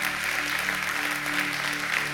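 An audience applauds steadily, a dense wash of many hands clapping at an even level throughout, with a faint low hum beneath and no voices.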